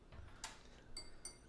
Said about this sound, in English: We should add a ding ding sound effect. Tap your glass. Ding ding.